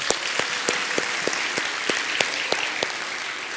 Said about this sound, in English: Hey, give the kids a round of applause.